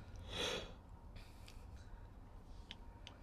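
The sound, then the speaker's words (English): A big yawn, heard as one short, breathy rush of air, followed by quiet room noise with a few faint clicks. No one speaks. “That was a big yawn.”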